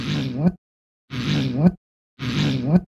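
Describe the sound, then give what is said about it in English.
A fart sound effect known as Wendy Williams' fart plays three times in a row, each a half-second buzzy, low sputtering blast that rises sharply at the end, separated by short silences. “I love that sound effect.”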